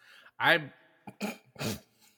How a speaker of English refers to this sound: I burped right in the middle of saying it. Good. I'm curious if you can pick that up on the listen.